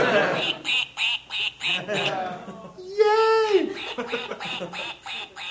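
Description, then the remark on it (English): A children's push-toy duck quacks over and over in steady bursts, loud, with people talking and cheering over it and one long drawn-out honk in the middle. “It keeps going. I know, it's a very insistent duck.”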